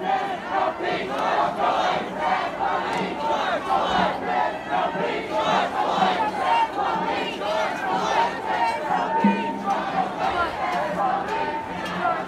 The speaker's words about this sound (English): This protest, this living, breathing, chanting, emotional group of people converge onto Detroit police headquarters. They stand toe-to-toe with a line of police.